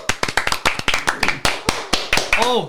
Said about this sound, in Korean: 남자 박수! 나 남자답게.